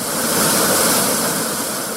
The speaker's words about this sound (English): USS Kentucky rising to the surface off the coast of Hawaii. Nearly 2 football fields long, it is the deadliest engine of destruction in the American arsenal, able to carry almost 200 nuclear warheads atop the missiles loaded beneath those hatches.